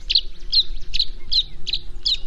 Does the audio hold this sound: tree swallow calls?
yes